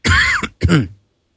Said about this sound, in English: Sorry, I'm getting too excited now. I'm going to have to start coughing.